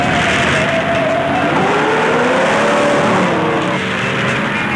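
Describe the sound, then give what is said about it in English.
An old 1964 Chevy car's engine roars loudly and steadily as it races, its pitch sliding up and falling back while the motor strains, with no voices over it. “I'll beat you from here to Tampa right now in my old 64 Chevy.”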